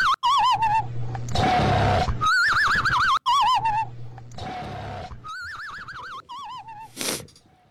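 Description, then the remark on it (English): A dog snores in two slow breath cycles: raspy, rumbling inhales alternate with high, wavering whistles on the exhale, steady and fairly loud with no talking. “It's a dog snoring.”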